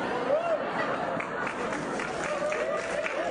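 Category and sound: crowd, applause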